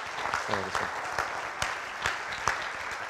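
An audience breaks into steady, dense applause with cheering voices rising through it, a continuous crackle of clapping that holds at an even level for a few seconds.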